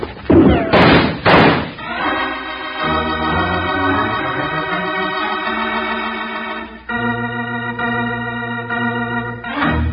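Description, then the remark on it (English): A door is yanked open with a couple of loud knocking bangs in the first second or two, then sustained, droning musical tones carry on to the end. “Yank open the door, Jingles, and duck.”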